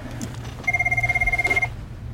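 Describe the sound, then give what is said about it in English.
A Dunder Mifflin office telephone rings with a rapid, trilling electronic bell for about a second, clear, over a low steady hum, then stops. “I think there's someone on the phone.”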